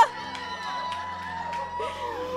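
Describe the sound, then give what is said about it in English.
A crowd shouts "yeah" together in a loud, sustained burst of cheering and whooping, many overlapping voices, an audience answering a speaker's call of "go" in call-and-response. “I'm like, I respond like a cheerleader. I say, go. You say, yeah, whatever.”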